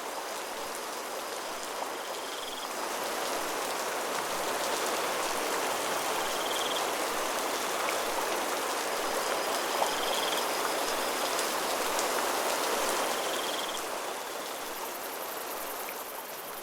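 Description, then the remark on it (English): Steady rain falls continuously, a dense, hissing patter of drops on surfaces, with faint high chirps of crickets woven through the wash of sound. No one speaks. “I'll go home in the rain”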